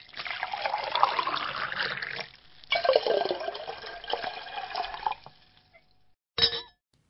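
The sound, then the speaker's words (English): A sparkling cooler pours steadily into a glass in two close pulses lasting several seconds, followed after a pause by a brief, sharp splash or fizz. No one speaks. “Have some of that sparkling cooler, dear. Just a little.”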